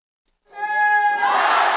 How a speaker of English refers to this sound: The flags fly everywhere, filling the stadium in India's capital with a sea of saffron, white, and green. The crowd is in the thousands, full of enthusiasm, eager to sing India's national anthem.